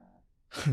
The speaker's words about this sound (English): Much like Ninja snoring in the background. True story.